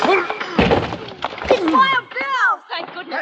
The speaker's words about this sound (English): Hey, open up. Let us in. Put your shoulder to the door, Jingles. All right. Together now.